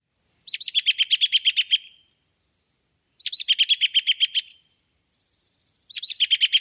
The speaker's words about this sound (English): So that's the American Robin whinny call.